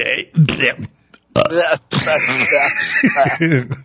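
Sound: voice imitating a burp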